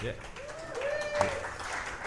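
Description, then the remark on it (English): Steady crowd applause for the service staff fills the space, with a drawn-out whoop rising over the clapping partway through and a murmur of voices underneath. “Let's really give it up for our service staff.”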